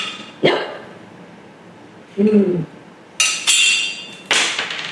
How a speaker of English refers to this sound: Well, I cracked the glass. Let's try one more time.